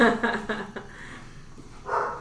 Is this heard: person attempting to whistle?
no